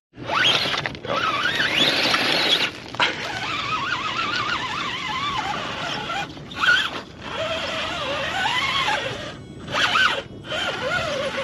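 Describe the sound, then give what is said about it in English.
A remote control car drives around, its small electric motor whining loudly and warbling up and down in pitch, with a few brief cutouts between bursts and no one talking. “I think somebody has a remote control car up here distracting me from my teaching.”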